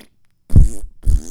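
Two loud, buzzy fart sound effects blare back to back, each about a third of a second long, prominent with no talking around them.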